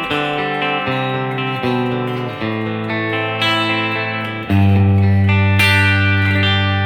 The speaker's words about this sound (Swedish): Så då är det här ljudet med en Greenback-talare som är default. Default, precis, exakt. Och du hör reverbet, jag kan köra lite om du... ja, du drar på lite mer reverb.